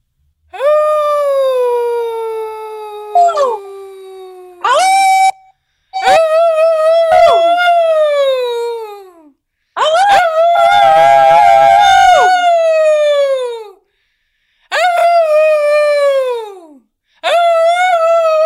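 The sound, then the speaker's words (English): A few people howl together like wolves in long, sliding, wavering cries, repeated in several loud bursts with short pauses, their voices overlapping into a thicker chorus midway. “Have a wonderful evening and go outside and howl when it gets to be 8 o'clock.”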